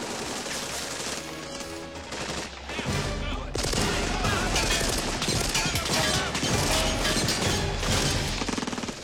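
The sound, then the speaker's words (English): A dense movie battle scene: rapid gunfire rattles throughout, then a heavy explosion bursts in around the third second and the roar stays loud and sustained to the end. “We had a lot of difficulty with this scene with the timing that explosion, I remember.”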